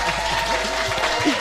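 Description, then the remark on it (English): A short burst of applause for news of an upcoming UK arena tour, a small group clapping steadily with a dense, crackling texture at moderate loudness, with faint voices mixed in. “Let me give you a little applause for that.”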